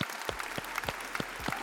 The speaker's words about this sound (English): That's going to be a show. As we do, we like to clap it out. Let's clap it out, chat.